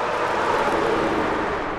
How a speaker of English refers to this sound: I'm standing on a highway. Behind me is Maeda's authentic Mexican food. It's next to Dan's Tire Service. It is surrounded by trucks and cars.